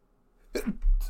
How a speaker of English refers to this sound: Bless you. Bless you.